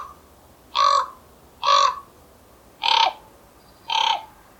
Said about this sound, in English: And they say the crow has the higher-pitched caw. The raven has the lower-pitched croak.